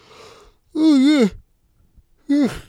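A person yawns, a drawn-out voiced yawn that rises and falls in pitch, followed after a pause by a shorter yawning sound. There is no other talking.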